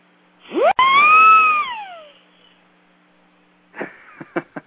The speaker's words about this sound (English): How are you making those noises over there? You what you got? Stuff. You know, it's just little mechanical devices. Top Acme stuff. Siren.